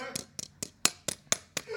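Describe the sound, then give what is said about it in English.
A knife tapping on a water bottle lid: about seven sharp, bright ticks in a steady, quick rhythm, each crisp and short with a slight ringing edge. “this is me tapping a lid on a water bottle with a knife.”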